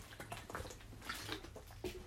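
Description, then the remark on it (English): Someone sips water: a few quiet, wet slurping and swallowing noises spread over about two seconds, with no talking. “We will swing it down to Class 2A as I take a sip of water.”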